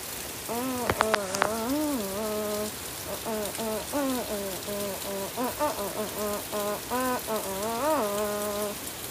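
Heavy rain pours down outside in a steady, dense hiss that fills the whole recording, with wavering hum-like vocal tones rising and falling over the downpour.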